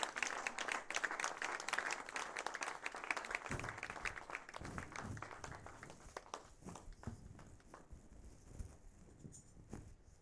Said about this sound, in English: A round of applause for Jesus. Hallelujah. Deaconess, will you volume, please? If you are clapping for Jesus, do it very well.